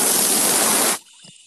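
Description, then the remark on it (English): A loud, steady hiss of an aerosol deodorant can spraying for about a second, then cutting off abruptly, leaving faint room noise and a small clatter. “Do you just want to hear deodorant spraying?”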